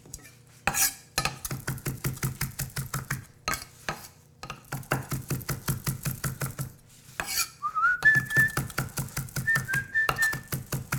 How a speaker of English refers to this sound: Chopping, not much more to do. Good time to practice your skills, ladies and gentlemen. I find it easy when I do chopping like this.